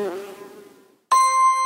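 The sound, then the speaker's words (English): A bee buzzes, then fades away over about a second as it flies off; after a short silence, a bright sustained chime rings out. “When the bee egg hatches, it eats the pollen ball and changes into an adult bee, and then it flies away all by itself.”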